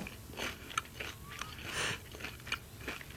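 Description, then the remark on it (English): Crisp crunching as a fried onion ring is bitten and chewed, with repeated sharp crackly bursts in an uneven chewing rhythm and no talking. “That's a crunchy onion ring.”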